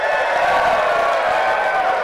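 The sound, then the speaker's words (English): A studio crowd of at least 400 people cheers loudly and continuously, a dense wash of many voices whooping and clapping with no pause for the whole moment. “The crowd needs to settle down.”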